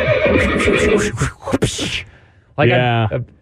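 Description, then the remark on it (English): A loud horse neigh, a long shaky whinny lasting about two seconds, followed after a brief pause by a second, shorter high-pitched whinny. “I uploaded a bunch of horse sound effects and you don't use them.”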